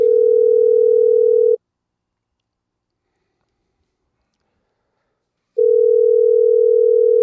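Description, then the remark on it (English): Ringback tone from an outgoing phone call to a Radio Shack store in Las Vegas: a steady electronic hum sounds for over a second, goes silent for about four seconds, then starts again. Loud and clear, with no voices. “Do we know which Radio Shack this is that we're calling?”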